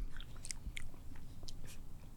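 Chewing and soft crunching of strawberry ice cream with pretzel pieces, with several brief bites and mouth sounds spread across a couple of seconds, quiet and with no talking.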